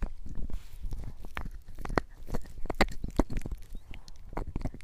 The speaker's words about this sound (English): She's chewing on her toy.